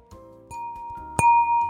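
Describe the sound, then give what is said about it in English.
Three sharp glass clinks in quick succession, the last one loudest, each leaving a clear, bright ringing tone that hangs on after the strike. No one speaks. “This glass has brought me nothing but joy.”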